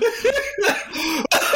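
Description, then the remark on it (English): A loud fit of harsh coughing, several raspy bursts run together over about a second and a half, with a brief gap before a final cough and a hint of laughter mixed in. “Where's the mute cough button on this thing?”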